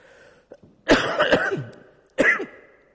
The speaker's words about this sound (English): Excuse me, I had this cough for about 2 weeks, and it's driving me and my wife mental. So you'll just have to excuse my coughing.